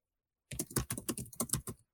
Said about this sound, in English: Don't be typing away. You hear that?